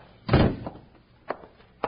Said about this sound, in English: Now close the door.